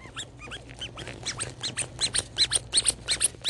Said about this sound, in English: Ooh, little froggy squishums. What do these do? I think these are supposed to squeak. They're like these little froggies. That is as loud as it goes.